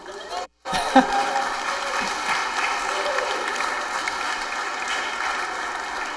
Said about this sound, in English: I don't know if y'all could hear that on the stream, but Eric was getting booed by his friends.